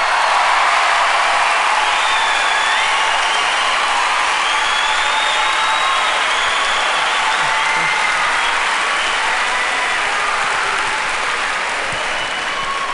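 An audience at an Eddie Murphy stand-up show breaks into sustained, loud applause for a band, a dense wash of clapping that holds steady for several seconds before tapering slightly, with faint cheers and whoops mixed in.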